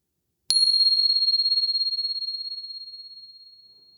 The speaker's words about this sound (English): I invite you to find your meditation posture for this afternoon. And here comes the bell.